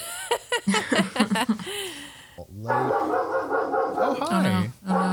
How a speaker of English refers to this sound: Oh, no. We got a dog friend. It's funny because he's nowhere near my room right now.